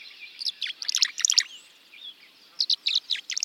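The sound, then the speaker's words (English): Bright, liquid twittering chirps from tree swallows gathering near nest boxes on posts at the edge of a marsh in June sunlight come in quick bursts, pausing briefly midway before another rapid flurry of calls, clear with no voices present. “Tree swallows glisten in the June sunlight.”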